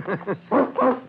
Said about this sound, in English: You, Mr. Stable, let that dog alone. Yeah. Here, Trixie, come here. Here, Trixie, come on.